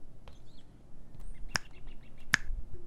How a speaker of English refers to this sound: Snap your fingers twice if you understand your instructions.